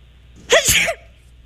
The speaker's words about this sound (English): All right, here we go. Here's sneeze number two. Listen closely.